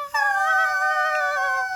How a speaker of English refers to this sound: Hold on, let's do it together though. We have to do our tiny, tiny screams. Tiny screams of terror. Terror. Alright, ready? 3, 2, 1.